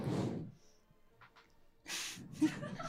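Heavy, rushing breaths blown straight into a microphone: one loud, noisy exhale at the start, a quiet pause, then a longer breathy burst with a brief snorting catch, no talking.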